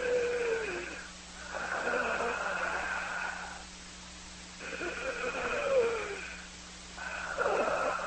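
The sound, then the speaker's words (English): A person imitates heavy, labored breathing: about four long, rasping in-and-out breaths in a slow, steady rhythm, fairly loud, with no talking. “He goes, I just heard somebody breathing heavily and hard, like labored breathing in my ear. I said, like this, like.”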